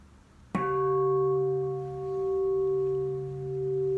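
signal or alarm, gong ringing

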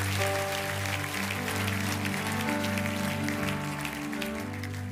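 crowd, audience clapping hands

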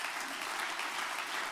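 crowd, audience clapping hands

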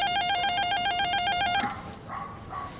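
signal or alarm, apartment door buzzer

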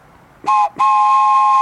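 vehicle, train horn

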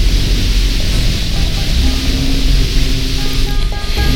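nature, rain

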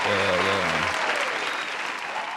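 crowd, round of applause

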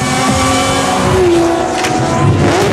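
vehicle, race car engine revving

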